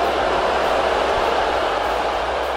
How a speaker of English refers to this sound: Now, that was the crowd booing Osaka when she beat Serena Williams in the finals of the 2018 US Open.